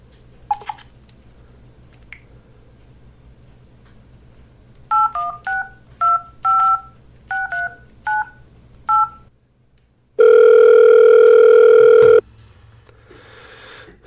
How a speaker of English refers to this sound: So let's first take a moment to see if we can get a hold of him on his cell phone. All right, hold on a second.